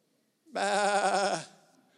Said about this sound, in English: Sheep are not impressive. Have you been around sheep? I've only seen them a couple times in person, maybe a handful of times